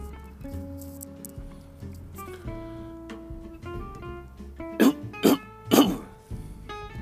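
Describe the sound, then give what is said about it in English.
Three sharp allergy coughs burst out outdoors in quick succession near the end, heard over soft, steady background music with no talking. “Dang allergy coughs even occur outside.”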